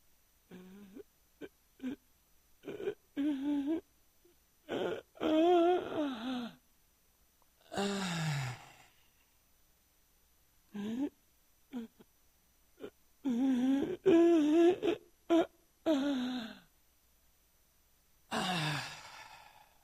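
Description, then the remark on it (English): A voice imitates labored, wheezing breathing: a long run of strained, raspy breaths, some voiced and whining, with short pauses between them, fairly loud, with no speech. “I was breathing every breath like this.”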